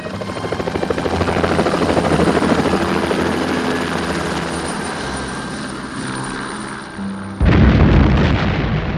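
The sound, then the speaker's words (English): A helicopter's rotors chop loudly and steadily for several seconds, then a sudden, heavy low boom cuts in near the end as the helicopter is blown up, with rumbling continuing afterward. “He blew his helicopter up.”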